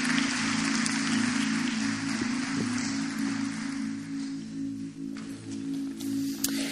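A church audience at Northside applauds to cheer on a group, a dense, steady wash of clapping that holds for several seconds, with a low sustained hum beneath it, easing slightly toward the end.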